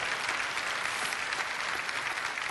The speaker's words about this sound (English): Somebody give him a clap offering and say amen.